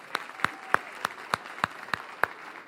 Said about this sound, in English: Y'all give them all a round of applause.